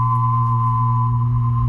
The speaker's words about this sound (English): A hum and a whistle. A hum and a whistle together?